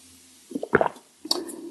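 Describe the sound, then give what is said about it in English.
Someone takes a sip of coffee: a wet, slurping burst with a soft gulp, followed by a second briefer slurp after a short pause. It is moderately loud, with no talking. “Sipping coffee.”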